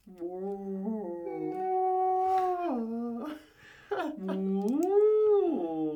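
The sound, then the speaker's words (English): A human voice imitates whale calls with long, sliding, moaning tones that rise and fall in pitch, sustained and fairly loud across several seconds with a brief pause midway. “Can we do whale sounds?”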